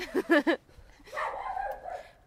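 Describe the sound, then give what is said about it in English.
A person mimics, as foley, a dog barking at people walking past its doghouse: three quick barks in a row, followed by a longer, drawn-out whining yelp that trails off. “Because we are the ones who are triggering the dog. That's just me barking, though.”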